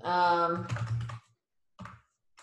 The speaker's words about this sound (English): Sorry, I was just typing something in.